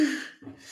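A single sharp sneeze bursts out, a loud breathy blast that quickly fades, followed by a softer exhale.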